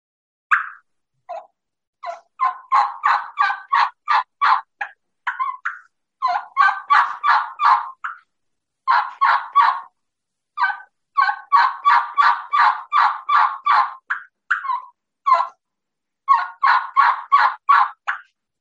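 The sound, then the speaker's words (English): A hen turkey yelp made on a hand-held turkey call, repeated in quick rhythmic runs of separate, raspy notes with short pauses between series, fairly loud with no talking. “And then that's just a plain hen yelp”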